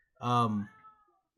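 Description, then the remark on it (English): A single drawn-out cat meow, loud, with a strong opening that trails off into a fading whine lasting about a second. “Did you just hear a meow?”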